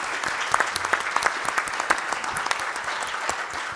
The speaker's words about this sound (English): Please join me in welcoming our students joining us from MC Squared STEM High School, the St. Luke Boys and Girls Club, and Trinity High School. Round of applause to our students.